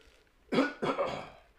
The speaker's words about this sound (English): But, hold on, let me clear my throat for this one.